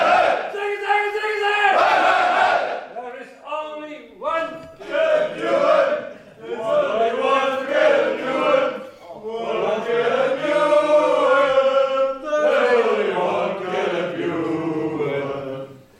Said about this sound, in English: We were with … in the celebration. Let's have a look at this. The cheer in half Belgium, half English. Let's listen.